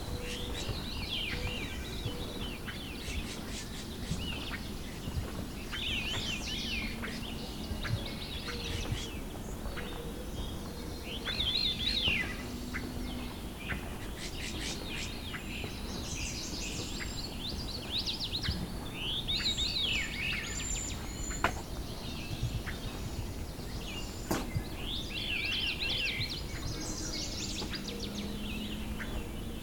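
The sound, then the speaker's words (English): A black-and-white warbler sings a thin, high, squeaky song, repeating the same wheezy phrase many times over a steady background hiss. No one speaks. “Our black and white warblers moved too far.”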